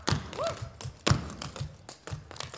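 Clogging footwork: a run of sharp, percussive taps in an uneven rhythm, punctuated by two heavier stomps and a brief shoe squeak, with no voices.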